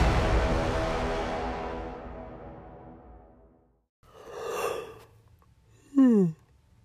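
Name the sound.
yawn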